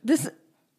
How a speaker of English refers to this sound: I was going to give this podcast 4 stars, but then one of the co-hosts sneezed right into the microphone.